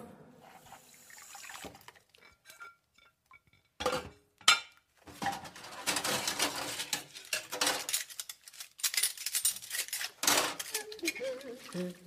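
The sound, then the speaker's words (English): Dishes being washed in a sink: running water hisses in bursts while plates and cutlery clink and clatter irregularly, with a few sharper knocks standing out. “And now we're just up on the dirty dishes because they didn't clean up after themselves.”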